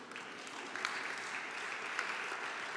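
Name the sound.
audience applause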